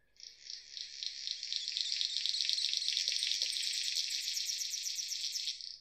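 A male bird's mating song, sung from a perch in the canopy during mating season, that sounds like crackling radio static: a dense, high, hissing buzz laced with rapid ticking pulses, holding steady for about five seconds with no voices.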